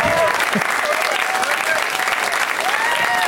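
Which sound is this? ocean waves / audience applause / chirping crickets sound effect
audience applause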